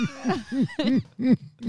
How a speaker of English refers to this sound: had to cough. That was that. We just apologize to this audience.